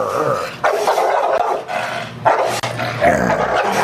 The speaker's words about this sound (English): Are those really Bulldogs or are those just dogs? Because we got to be specific. I'm going to be honest with you. That's a real Bulldog.